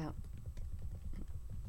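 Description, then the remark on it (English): Quiet, irregular clicking of keys being typed on a computer keyboard, a dozen or so taps in quick bursts over a low, muffled background rumble. “Typing that in. Can anyone hear me typing? Yeah, definitely. Here are the keys.”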